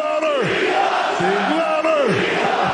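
A large crowd cheers loudly, a dense, steady roar of many overlapping voices with individual yells swooping up and down in pitch throughout.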